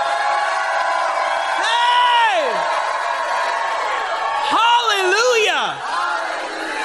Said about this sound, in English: If you believe it, just set the Bible down and shout like you've never shouted before. You've never shouted like that before? Come on.